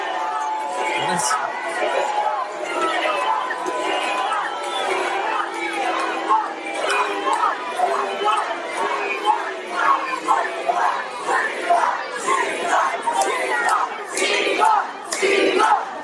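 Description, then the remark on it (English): A large crowd at a campaign event yells and shouts "Sheila Jackson" continuously, a dense roar of overlapping voices with sharper cries bursting out near the end, loud throughout the sixteen seconds. “What are they yelling? Sheila Jackson. It's a campaign event.”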